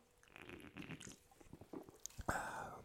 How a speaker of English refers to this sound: I'm going to take another sip of this fucking sparkling Kirkland signature grapefruit. Give me a second here, ASMR.